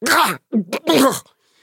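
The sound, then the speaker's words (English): A voice performs a sleeping goblin's choking and coughing after a thunder boom wakes it: a rough, strained burst, two short gasping hacks, then a longer gravelly retching cough before silence. “The boom awakens the sleeping goblin, who begins choking and coughing.”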